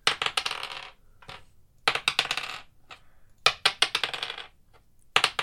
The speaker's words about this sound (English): So please roll 4d6.